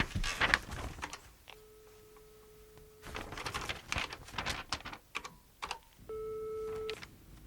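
A telephone number from a lost-pet notice being dialed: a quick run of clicking button presses, with a steady electronic tone humming twice between them, no voices.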